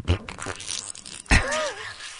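A short, wet fart sound like a squeezed bottle sputtering, with a soft burst followed by a louder squelching blurt that trails off in a squeaky, whistling hiss.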